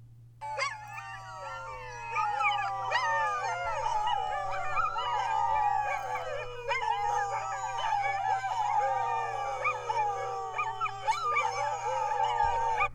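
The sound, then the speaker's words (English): A pack of well-rested sled dogs from an Iditarod race team howls and whines together in an excited, overlapping chorus, loud, with rising and falling yelps that continue almost without pause as the team leaves Galena; no one speaks. “We will leave you with the sound of some well-rested dogs from Nicholas Petit's team as he left Galena yesterday.”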